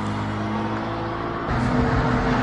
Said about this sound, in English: What is up with the traffic today? And always, every day, this intersection's always crowded. I hate pulling out of here.